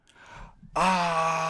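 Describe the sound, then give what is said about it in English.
A baby being held and carried outside screams: after a brief faint, breathy lead-in, a loud sustained wail bursts in and holds steady at one pitch, strong and harmonic-rich, right to the end. “Is a baby just being held screaming?”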